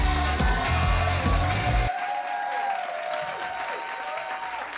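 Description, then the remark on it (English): A crowd claps and cheers steadily, a dense, loud wash of applause with whoops, then softening slightly after a couple of seconds as the clapping continues under a bright, sustained tone. “Oh, what a great crowd. What a great crowd.”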